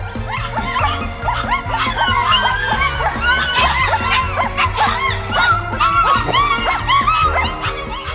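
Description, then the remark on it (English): Puppies yip, bark and whimper in a dense, nonstop chorus of high rising-and-falling cries, loud, layered over a steady rhythmic music backing with a thumping low bass. “At night, they make musicals with puppies. Puppy dog musicals.”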